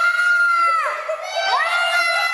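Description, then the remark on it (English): Several children at a 6-year-old's birthday party scream at once in frightened shrieks as a Bigfoot character with party balloons arrives, a loud, continuous high-pitched chorus with voices sliding up and down in pitch throughout. “The beast scares the daylights out of the kids who think he's for real.”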